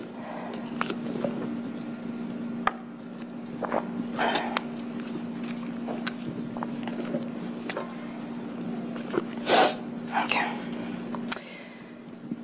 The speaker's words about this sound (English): Let me take a sip really quick before I read.